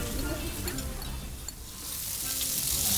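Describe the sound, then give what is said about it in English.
Steady crackling sizzle of food cooking on a hot grill, a dense continuous hiss with small pops, moderately loud, swelling slightly toward the end. “We have a selection of scorched dishes fresh from the grill, sir.”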